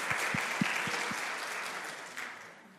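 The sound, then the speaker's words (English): An audience bursts into steady applause to celebrate 30 years of marriage, a dense wash of many hands clapping at once, with a few sharp individual claps standing out early before the sound gradually thins and fades. “Yeah, that's worth a clap.”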